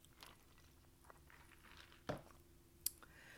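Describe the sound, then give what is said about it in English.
Someone quietly sips a drink, with soft wet mouth noises, a brief slurp, then a small click as they swallow. No one speaks. “I'm going to take another sip of my drink.”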